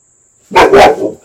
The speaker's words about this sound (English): Dog.